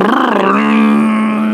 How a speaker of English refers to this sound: He just took off on his motorcycle. He's off. Goodbye.